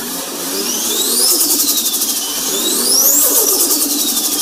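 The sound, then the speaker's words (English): A rough, sputtering drag racing engine with electrical problems revs twice, its high-pitched whine climbing and falling each time over a loud, buzzy, uneven rumble. No one speaks. “These symptoms are normally accompanied by a sound that sounds something similar to a steel backpack leaf blower has mated with a wild hummingbird, and it sounds kind of like...”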